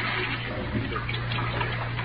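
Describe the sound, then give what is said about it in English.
A steady, continuous rush of water pouring from a tap into a sink, with a low hum beneath it and no voices. “I emptied the rest of the poison into the sink and let the water run for a minute.”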